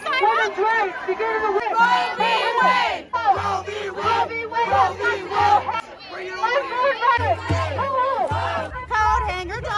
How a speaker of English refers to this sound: rally at the Arizona State Capitol. Two sides here. You've got the pro-life side quietly demonstrating, praying, being polite, being normal. And you've got the pro-abortion side screaming until they're blue in the face.